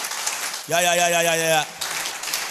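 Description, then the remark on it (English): A church audience claps steadily in a dense patter. Midway, a single voice cuts in with a loud, sustained held note for about a second, then the clapping carries on alone. “The way you are clapping, I don't think you believe the way.”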